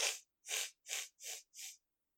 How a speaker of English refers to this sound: Yeah, get that sniffle out. Get that phlegm out.